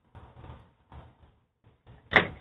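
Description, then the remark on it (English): A little boy strikes the door of a house on a porch with a whip several times: a few muffled, irregular knocks, then one loud, sharp crack at the end, with no voices. “This little boy hitting the door with the whip.”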